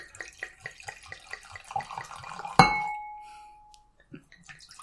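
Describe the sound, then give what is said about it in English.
Wine from Walla Walla, Washington glugs into a glass in quick, rhythmic bursts as a small pour, then a bright glass clink rings out and fades slowly. Clear, with no voices. “That was kind of a cheap pour, man.”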